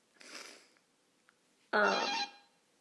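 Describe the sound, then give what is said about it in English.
An apartment door buzzer sounds twice as someone tries to buzz in: a softer, hissy first burst, then a loud, steady harsh buzz lasting about a second with strong harmonic tones, with no talking. “No, I don't know who's buzzing, trying to buzz in.”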